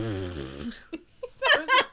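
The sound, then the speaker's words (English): A person makes a short, buzzy fart noise with their mouth, a low vibrating raspberry lasting under a second, followed by bursts of bright laughter. “that was the cutest fart noise I've ever heard.”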